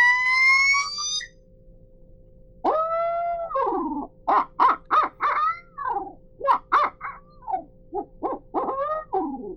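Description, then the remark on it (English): A screamer locator call blown loudly for turkey, to get a tom to gobble: a brief high-pitched tone, then a rapid run of wavering, owl-like hoots and cackles rising and falling in quick succession, with no talking. “If he hasn't gobbled it, I'll probably hit the screamer again.”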